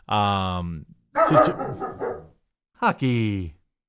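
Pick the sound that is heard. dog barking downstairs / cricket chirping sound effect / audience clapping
dog barking downstairs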